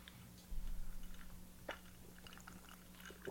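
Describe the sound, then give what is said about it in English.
Faint mouth noises of someone sipping a sangria-style drink of wine and cola: a few soft wet slurps and small clicks over a steady low background hum, with no talking. “I'll tell you a little something about Spain after we do our first sips.”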